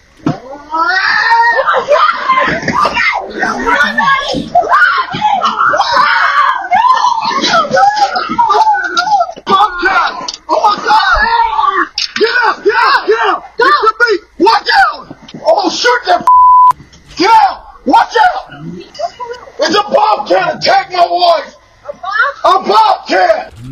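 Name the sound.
bobcat screaming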